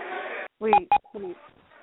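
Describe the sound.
Two short, clear electronic beeps in quick succession, steady and mid-pitched, cut in between muffled phone-line speech, with more talking after them.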